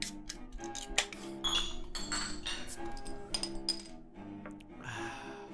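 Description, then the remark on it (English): Glasses clink together in a toast during a whiskey tasting, a handful of bright, ringing taps scattered irregularly over a few seconds, moderately loud, with no one speaking. “Let's cheers to the Brew World Order, you guys.”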